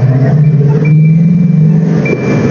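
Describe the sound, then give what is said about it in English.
Steady rumble of car traffic at the busy intersection of Markham Road and Ellesmere, with six lanes of traffic, engines droning and humming, a faint high whine from a passing vehicle and no voices. “I'm just waiting for the light to change, friends, listening for the traffic.”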